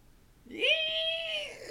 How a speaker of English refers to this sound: But, so, I guess one thing I forgot to say, sandhill cranes, they also, like, screech. Oh, okay. So they think that could be the screeching noise they heard.